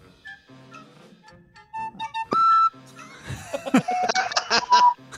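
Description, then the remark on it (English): A whistle sound effect blows several times: short tonal notes, one loud steady blast in the middle, then a busier run of sharp whistle bursts toward the end. “Lost my whistle.”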